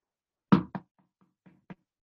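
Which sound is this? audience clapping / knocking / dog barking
knocking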